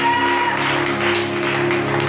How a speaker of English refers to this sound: Give God a better clap than that. Give God a better clap than that. Come on, come on. Give God a better clap than that.